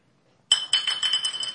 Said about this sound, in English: And then the bottle knocked over.